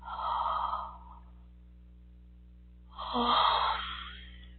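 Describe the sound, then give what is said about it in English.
A breathy yawn: a long airy intake of breath, a pause, then a second drawn-out breath with a brief low voiced groan, alone with no talking. “It's making me yawn.”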